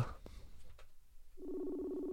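After a brief stretch of faint background noise, an outgoing call's ringing tone begins, a steady electronic hum that holds at even volume through the end. No one speaks.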